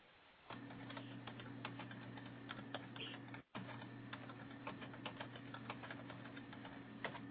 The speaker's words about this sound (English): I'm sort of typing some of this into the chat room here.